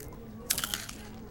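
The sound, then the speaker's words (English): Someone bites into crunchy sour cream and onion potato chips from a vending machine, giving a quick cluster of sharp, crackly crunches over a steady low background hum. “Got you some chips from the machine.”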